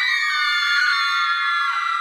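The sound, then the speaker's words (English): A teacher and a class of children in a classroom, looking toward the window, scream together in a loud, high-pitched, sustained burst lasting about two seconds, the overlapping shrieks piercing with no talking. “The teacher and all the other kids in the class turned their heads to look at the window, and they all started screaming.”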